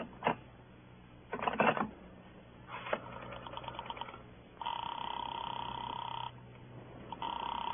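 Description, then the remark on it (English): A telephone call to Sing Sing prison being dialed: a few sharp clicks and a rapid run of mechanical ticking, then a steady ringing tone sounds twice on the line. No one speaks. “I got to put through a call to Sing Sing.”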